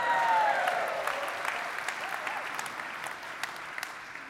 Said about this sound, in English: Now you can clap.